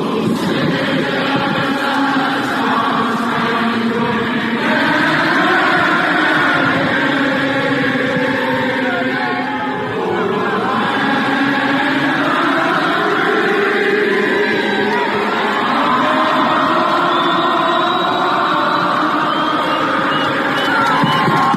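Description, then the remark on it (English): A huge stadium crowd at a soccer match in Charlotte sings the national anthem together after the singer's microphone fails: one sustained, swelling chorus, thousands of voices blending into a loud, reverberant wall of song that holds steady throughout with scattered shouts mixed in. “So the crowd jumps in and finishes the entire song, and it's awesome. Here's a clip of the entire stadium singing.”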